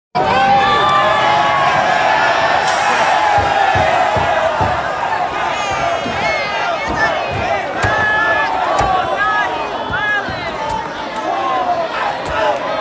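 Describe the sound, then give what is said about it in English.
A large crowd of young people yelling and shouting over one another in New York City as people jump out of a car and destroy property, a loud, dense, continuous roar of overlapping high-pitched voices with scattered sharp thuds and bangs throughout. “There are tons of young people yelling about this.”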